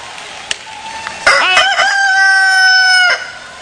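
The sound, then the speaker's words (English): A crowd of people together imitates a rooster's crow to their neighbours: one loud, drawn-out cock-a-doodle-doo lasting about two seconds, rising and then holding steady before cutting off. “But could you just let me do something that is very prophetic to your neighbor? Just say to them, cuckoo-roo-coo.”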